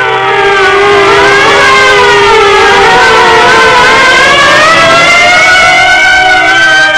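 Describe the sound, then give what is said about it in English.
Several loud sirens wail together, their rising and falling tones overlapping in a continuous, sustained blare that fills the whole stretch without pause, with a low rumble of traffic beneath. “At the sound of the sirens, Marv's huge bulk quivered.”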